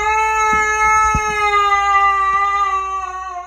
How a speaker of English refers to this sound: This dog sounds like an old guy, but it's not. It's a dog.